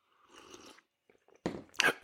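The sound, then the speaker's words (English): A soft, airy slurp of someone sipping hot, fresh-roasted Freedom Hill coffee, followed by a pause and then louder sipping and swallowing noises. No one speaks. “We're going to take a couple of sips.”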